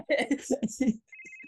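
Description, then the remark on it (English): A phone rings with a bright, warbling electronic tone that comes through clearly near the end, after a stretch of voices talking over it at moderate volume. “I'm going to call Otto. It goes to voicemail. Otto doesn't carry his phone. He doesn't use it anymore. You hear it ringing.”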